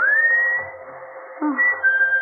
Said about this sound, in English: whistling for you. Answer it, dear. Go on. I can't whistle.